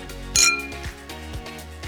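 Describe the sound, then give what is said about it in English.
Wine glasses clink together once, a bright, sharp chime with a short high ringing tail, followed by a soft, steady low rhythmic pulse underneath. No one speaks. “Now that's worth raising a glass to, so grab your favorite vino and join us.”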